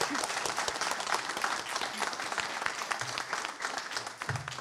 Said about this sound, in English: Before we start, I was just wondering if you could give a round of applause to the US Embassy for hosting us in person this evening.